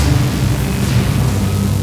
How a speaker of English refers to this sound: The beam strikes the bat. There is an explosion of light as the chain shatters and the golden amulet flies off the bat's body.